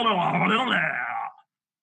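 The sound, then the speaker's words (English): A voice imitates a rough, throaty snarling growl, held loud and steady for over a second before cutting off abruptly into silence. “Most of it's snarling and growling and what we would call ululation.”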